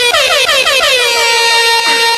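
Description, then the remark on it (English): A loud, blaring air horn effect fires in quick repeated bursts, its harsh stacked tones wavering and sliding before holding steady for the rest of the short clip. “Give me an air horn.”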